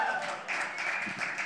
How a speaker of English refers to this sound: some noise, round of applause. Anyone been here for this series?